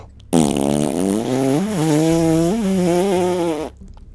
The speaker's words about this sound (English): But Frank, as he was jumping, let out a mighty toot.